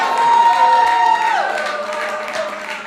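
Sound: audience shouting and cheering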